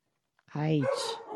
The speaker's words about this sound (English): Oh, right on cue. Right on cue for the dogs. Yes, I know. They're making noise, and I'm like, are you serious?